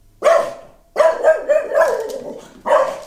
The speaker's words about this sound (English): So I'm going to play you a couple of dog barks.